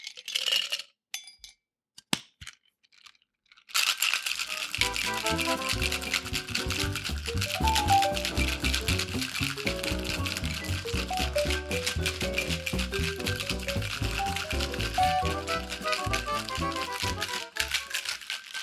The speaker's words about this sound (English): So that's all that goes into the shaker. Add some ice and give that a good shake.